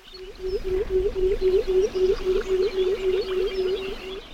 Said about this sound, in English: And this eerie hooting, which might conjure up the image of an owl at night, is actually the song of a pectoral sandpiper.